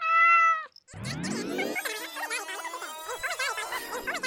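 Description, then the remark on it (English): A person sings in a cat-like meowing voice, imitating a cat: a short held note, a brief pause, then a long rising, wavering tone with warbling vibrato, fairly loud. “Anyway, at least we have our song. Meow, meow, meow, meow, meow, meow, meow, meow, meow, meow, meow, meow.”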